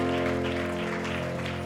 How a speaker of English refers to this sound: Can you clap your hands to the Lord?